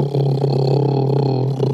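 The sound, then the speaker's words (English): A voice imitates a big drill with a loud, sustained, low buzzing drone that holds a steady pitch for under two seconds, with no other talk. “So think of a big drill.”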